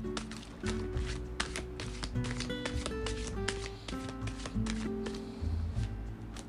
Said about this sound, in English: So I'm going to pull more cards to see actually what is a future outcome, all right, of the situation.